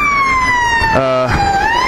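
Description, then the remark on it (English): A loud police siren wails, its steady tone dipping in pitch for a moment as the police car races past, over a constant bed of busy rush-hour street traffic with many cyclists in London. “Police cars racing past, traffic, loads of cyclists.”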